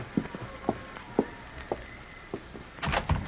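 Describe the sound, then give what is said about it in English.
A door is opened, with a handful of soft knocks and thumps spaced out over a few seconds, a faint creak, and a louder clatter of handling at the end. “And don't open that door so wide, you'll blow the lamp out.”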